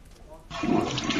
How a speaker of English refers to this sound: That's a long wait on that flush.